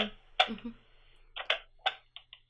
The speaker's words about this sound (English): Hi, I'm back. I have an Enigma machine with me. Oh, cool. Excellent, right. So I'm going to press a few keys on the Enigma machine, so let me know if you can hear it, okay?